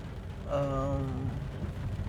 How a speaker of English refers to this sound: So right now, the rain is falling heavily, as you can hear from the splattering around me right now.